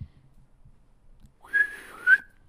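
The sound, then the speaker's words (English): A person whistles a short, wavering two-note phrase, slightly breathy and uneven, lasting about a second at moderate volume after a quiet stretch with faint low rumble. “That was a bad whistle.”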